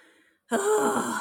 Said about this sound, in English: Why did you gasp like that? What happened?